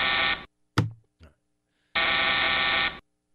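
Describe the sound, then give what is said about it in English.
A harsh, loud studio buzzer on the Ben Maller Show, a talk show, blares twice, each blast flat and sustained, the second running about a second; between them come a brief sharp thump and a short muffled knock. “You can shove that buzzer where the sun don't shine.”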